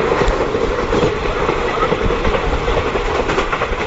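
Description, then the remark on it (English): A train rattles steadily along an old railway track, its wheels clattering in a busy, uneven rhythm over a dense rumbling roar, loud throughout with no voices. “But it's just like, oh yeah, this does sound like a train chattering down on a 100-year-old track.”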